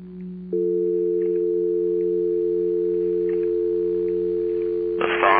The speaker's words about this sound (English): Hum of the dial tone that was always there. It was a nice warm tone. It never yelled. It never fought.